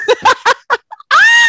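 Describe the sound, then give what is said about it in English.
A person reenacts screaming on finding an unflushed toilet in a bathroom: four quick, breathy vocal bursts and a couple of small yelps, then a loud, high-pitched shriek held briefly. “And so I saw it and I screamed. I screamed.”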